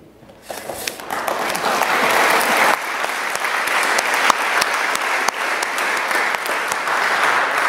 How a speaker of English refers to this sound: I will make some final remarks, and we'll give a final round of applause after my remarks to the entire panel.